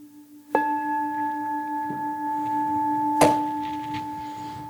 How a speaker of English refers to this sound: I'm going to sound this gong, and then you just simply do the meditation without the thinking about it.